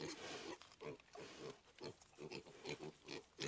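A pig grunts and snorts in a quick, uneven series of about ten short, rough bursts, fairly loud with no voices present.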